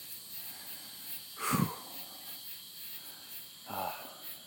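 A steady, high-pitched chorus of cicadas and tree frogs drones on on a summer night in Central Texas, broken by two brief, louder croaking calls, one early and one near the end.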